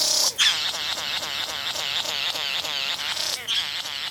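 A male satin bowerbird sings while dancing and hopping from side to side in front of his bower, a steady stream of rapid, buzzy, whirring notes repeated in quick rhythmic pulses, fairly loud and close, with no voices over it.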